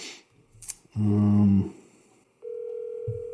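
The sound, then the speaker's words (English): Telephone keypad tones as a phone number is typed in to make a call: a short, buzzy low beep, a brief pause, then a steady electronic tone held to the end. The tones are clear, with no talking. “Okay, I'm just typing in the number if you're listening on the podcast here, so bear with me.”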